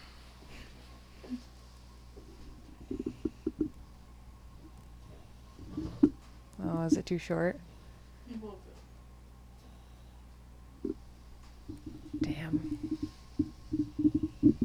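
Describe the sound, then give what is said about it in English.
A dog named Melman snores in low, rough, rumbling pulses that come in short rhythmic runs, with quiet whispering and a brief spoken question in between. “He's snoring so loud.”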